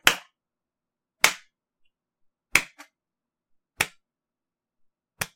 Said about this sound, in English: Why aren't you guys clapping with me? Come on, guys!